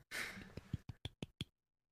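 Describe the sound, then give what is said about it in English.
A breathy exhale leads into a golf clap: about five soft, light hand claps in a short, evenly spaced run, before everything falls silent. “You got a golf clap for you, sir.”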